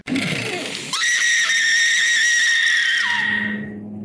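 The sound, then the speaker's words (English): A voice imitates a woman's loud, shrill scream at the top of her lungs, a single sustained high-pitched shriek held for nearly three seconds, piercing, preceded by a brief rough vocal onset. “I mean, she screamed like at the top of her lungs and went running out the door.”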